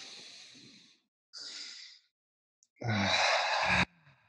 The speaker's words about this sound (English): And speaking of breathing, before I hand the floor over to you, do you want to do a big breath together? Let's do it. Yeah, you give me the call. 3, 2, 1, in.